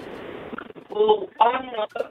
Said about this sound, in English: Yeah, the phone line was bad there. We'll try and work that one out.